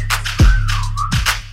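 A sliding whistle tone glides downward and back up over a thumping beat, with deep booming bass hits and crisp percussion driving underneath.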